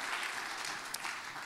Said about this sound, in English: Give the Lord a good hand clap of praise as you're being seated this morning.